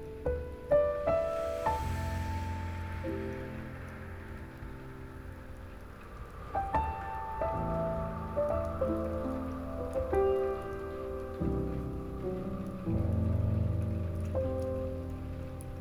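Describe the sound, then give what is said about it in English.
Gentle rain with scattered droplets pattering steadily throughout, blended with soft, sustained tonal chords that swell and shift slowly underneath; no voices. “Hearing nothing but its ventilated hums as they harmonize with the sweet crashes of the raindrops.”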